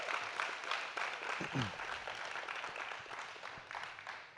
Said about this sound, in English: Y'all give another round of applause for all of our seniors who shared tonight.